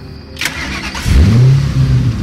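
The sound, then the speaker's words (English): The engine of an electric blue 1964 Mustang convertible cranks over and catches, then revs up into a deep, steady rumble, loud with no one speaking. “The car was a 1964 Mustang convertible, a sleek electric blue”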